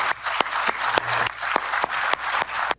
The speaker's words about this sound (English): And believe me, he deserved that round of applause and probably then, you know, more.